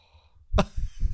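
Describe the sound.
A voice imitates a yawn close to the microphone: a sudden breathy gust followed by a couple of low, drawn-out groaning pulses, fairly loud and with no speech.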